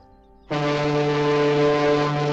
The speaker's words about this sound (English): Was that a boat horn? No, it's just the Easy Teasy street yacht.